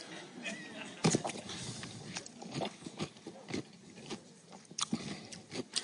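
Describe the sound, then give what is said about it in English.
Wet, crunchy chewing of a pickle, with a sharp bite near the start followed by irregular crunches and smacking sounds at an uneven rhythm. “Can you hear it crunch over the...”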